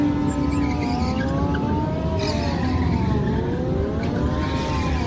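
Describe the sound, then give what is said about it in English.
Several motorcycle engines rev loudly and continuously, their pitches rising and falling and overlapping, with a dense rumble underneath and no talking. “Fuck you, I love motorcycles, by the way. I fucking love motorcycles, but fuck all of you.”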